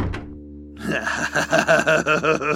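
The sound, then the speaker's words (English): A door thuds shut with one dull, solid knock as a stranger shambles out, followed by a low steady hum and then a rhythmic, buzzing pulse of sound. “He grabbed the pine cone and waited with trembling hands until the stranger shambled out the door.”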